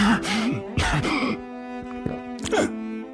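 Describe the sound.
A voice imitates a rough, hacking cough: two harsh bursts close together, then a strained, groaning breath with a faint sustained hum underneath, fairly loud with no other talk.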